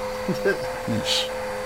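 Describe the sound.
A vacuum cleaner run over a mattress to remove mites drones steadily throughout, a constant motor hum with a faint whine, while muffled voices speak briefly over it and a short hiss rises near the end.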